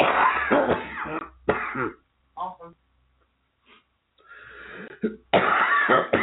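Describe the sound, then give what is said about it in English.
Loud bursts of coughing with raspy throat clearing, several harsh fits separated by brief pauses, with a few softer voiced noises in between. “Coughed up?”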